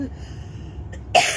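human body sound, cough

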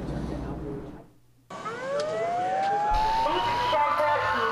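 signal or alarm, sirens wailing

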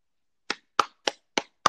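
human body sound, person clapping hands

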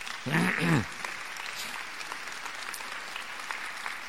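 crowd, audience applauding

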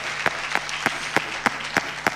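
crowd, audience clapping hands

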